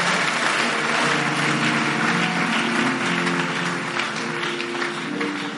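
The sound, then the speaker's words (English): An audience claps their hands in a steady, dense wash of applause that stays loud throughout, with some voices or sustained tones faintly mixed underneath. “Clap your hands, you have victory weapons.”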